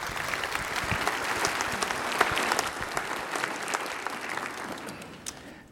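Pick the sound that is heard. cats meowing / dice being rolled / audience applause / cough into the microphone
audience applause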